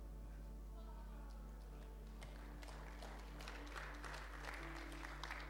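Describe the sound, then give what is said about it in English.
A crowd breaks into applause for Jesus, starting with a few scattered claps and swelling into steady, fairly soft clapping from many hands over a low, constant hum. “Yeah, Jesus deserves a clap for that.”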